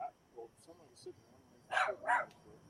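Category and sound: animal, dog barking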